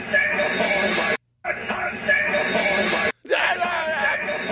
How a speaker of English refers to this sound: You hear someone screaming like, we got him on it.